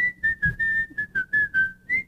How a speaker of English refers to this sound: What is that? What are you whistling? Bobby's World.